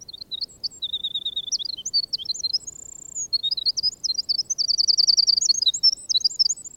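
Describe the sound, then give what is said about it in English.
A songbird sings a bright, rapid song of high trills and chirps, with buzzy runs and a sustained whistle, clear against a quiet woodland background in a northern forest. “And so shy and coy was the little minstrel that I came twice to the woods before I was sure to whom I was listening.”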